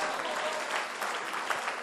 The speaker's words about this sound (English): Oh, okay. This is a new one. Clap for this new one.